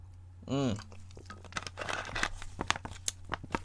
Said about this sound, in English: I'm going to take a sip of Sprite. Can you hear it just in the little Sprite? It's perfect.